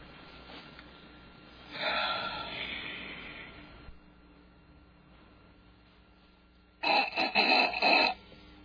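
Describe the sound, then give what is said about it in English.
Someone snorts hard through the nose twice to clear their sinuses: first a long rough snort, then after a pause a louder, sputtering one in quick pulses, with no talking. “Clear my sinuses. I'll snore all night.”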